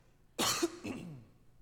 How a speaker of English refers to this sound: I'm about to clear my throat again.